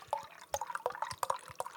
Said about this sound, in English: We're here to talk about this Double Tempest barrel-aged Imperial Stout. I am pouring it right now, if you're listening to the podcast.